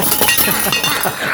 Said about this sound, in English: A duck has just swooped in through the window. A duck. A duck, and it starts flapping around, just flapping all over the place, like in your face, in your wife's face, just flapping around, knocking over all the pots and pans.